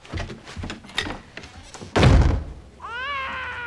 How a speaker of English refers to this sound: crying because the door slammed